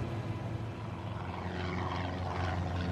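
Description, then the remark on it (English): Three twin-engine Cessna Skymaster propeller planes drone steadily overhead, flying in formation south toward Cuba in clear blue skies between Florida and Cuba in February 1996, a sustained engine hum with strong low tonal bands and a broad rushing wash above, at an even, moderate loudness with no talking. “Three twin-engine Cessna Skymasters are flying in formation, headed south toward Cuba.”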